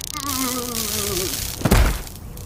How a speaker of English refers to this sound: Next time you decide to taser somebody, make sure he's already in the car, okay?